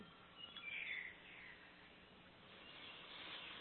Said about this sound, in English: I hear the sweet sounds in the background there. The birds of Kauai.